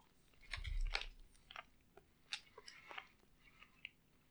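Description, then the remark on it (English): Wet chewing of soft, sticky sour watermelon-flavoured chewy candy cubes, with irregular smacking and squelching bursts and a low thump near the start, heard alone without any talking. “Good chew. Definitely more sweet than sour.”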